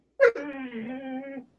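A dog lets out a single drawn-out whimpering whine, opening with a short sharp yelp and then holding a steady, mournful tone for about a second before fading out.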